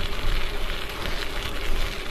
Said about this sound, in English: Whew, it is so windy, man. It's a struggle riding today.